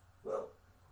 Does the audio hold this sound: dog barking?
yes